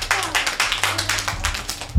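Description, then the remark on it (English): A brief round of applause for a boy who answered a quiz question correctly: quick, steady hand claps from a small group, fairly loud, continuing evenly for a couple of seconds with no talking. “Big round of applause.”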